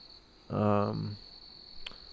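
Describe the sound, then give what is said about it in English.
A steady, high-pitched chorus of crickets trills continuously in the background outdoors at night on a front porch, interrupted midway by a brief, louder low buzzing sound and a short sharp tick near the end. “I got the crickets chirping, and it's pretty nice, actually.”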